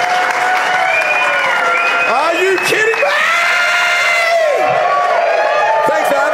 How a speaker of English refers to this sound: Folks, round of applause for the panel tonight.